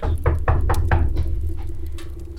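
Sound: knocking on a door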